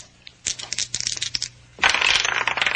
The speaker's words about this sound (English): One of the dice turns up a 6 while the other still spins.